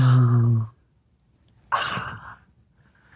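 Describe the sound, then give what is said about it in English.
A short voiced sound, a pause, then one breathy exhale during deep-breathing practice, lasting about half a second, a forceful rush of air that trails off into quiet. “We're gonna practice deep breathing.”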